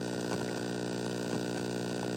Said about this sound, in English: Huh? What are you guys doing? Listening to static! What? Listening to static!